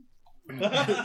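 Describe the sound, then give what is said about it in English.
A person voices a short, rough bear growl, loud, bursting in after a brief near-silent moment and rumbling gutturally for about half a second. “You can hear the bear approaching fast, running in the dark.”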